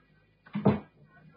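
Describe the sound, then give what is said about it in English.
A backstage dressing-room door swings shut with a single short, solid thud, with no one speaking. “Close the door.”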